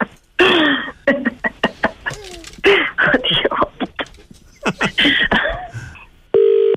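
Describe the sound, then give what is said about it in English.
A muffled, clipped voice comes over a telephone line with sharp clicks, then cuts off abruptly into a steady, loud telephone tone after the caller hangs up. “Oh, she's after hanging up again.”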